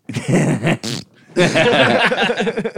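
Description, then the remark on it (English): A voice imitates a fart with wet, raspy mouth noises: a sputtering burst lasting about a second, a short pause, then a longer rumbling blast, loud. “I wanted to fart from my dick for so long.”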